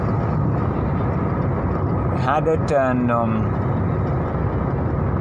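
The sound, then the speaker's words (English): A steady, dense low rumble of car engine and road noise fills the whole stretch, heard from inside a car on a trip to Manipal, with a brief stretch of someone talking over it. “I couldn't sleep much in the car.”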